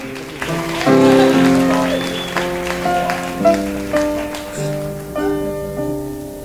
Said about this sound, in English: Give our cruise director a hand.